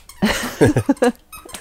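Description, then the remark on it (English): A handheld squeaker toy squeezed as a sound effect squeaks about five times in quick, uneven succession, fairly loud, with brief pauses between squeezes and no voices. “I like the sound effects during this podcast. It's little do people know, it's just me with a tweaker.”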